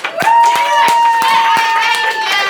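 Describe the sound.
An audience applauds with loud, scattered claps, while sustained voices cheer and whoop steadily throughout.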